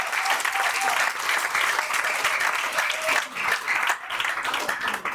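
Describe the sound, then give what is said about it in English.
A crowd applauds steadily for about five seconds, a dense, even wash of many hands clapping at a fairly loud, constant level, with faint voices mixed in underneath. “Let's clap for them.”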